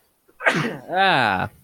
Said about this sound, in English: bless you